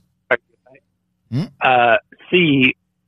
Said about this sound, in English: I think he's faking like the phone call breaking up. Is he underwater? What's going on with the phone?